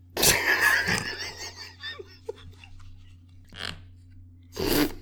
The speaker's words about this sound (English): That sounded so much like a fart. It wasn't.